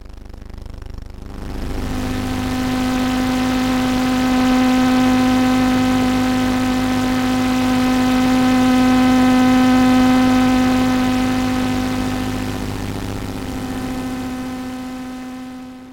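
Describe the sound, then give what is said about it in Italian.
A steady electrical drone of electromagnetic and radio signals from studio electronics (computer, speakers, telephone, video camera, microphone), with a strong low buzzing tone layered with evenly spaced harmonic lines and a faint high whine, holding for the whole clip without voices. “Quelle che avete appena ascoltato sono tutti i segnali presenti all'interno del mio studio. Computer, casse, telefono, videocamera, microfono e così via.”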